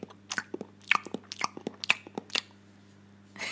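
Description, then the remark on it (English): Wet chewing with irregular smacking and crunching bursts for a few seconds, then a brief pause before a rustling burst at the end. No one speaks. “The rest of you microphone people, it was just a disgusting chewing sound.”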